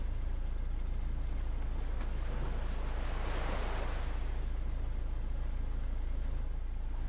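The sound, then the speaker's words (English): Sea waves wash steadily around a fishing boat in the evening, with one swell building and breaking midway, over a constant low rumble of wind and water. No voices. “Many hours had passed through sunrise to the evening time, where the lone fisherman now sat idle upon his fishing boat.”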